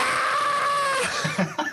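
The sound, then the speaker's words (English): A voice imitates Yoko Ono screaming into a microphone: a shrill, wavering scream held for about a second, then a few choppy, strained bursts. It is fairly loud, with no other talk. “Like, remember that clip of Yoko Ono just, like, screaming into the microphone during that? She's like...”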